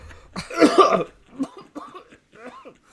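A loud, harsh cough bursts out, followed by a string of smaller, raspy coughs and throat-clearing sounds, like someone struggling through a coughing fit.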